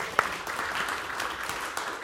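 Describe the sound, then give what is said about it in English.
A crowd applauds with a steady, dense wash of clapping that holds an even, moderate loudness throughout, with a few sharper individual claps standing out. “Let's applaud.”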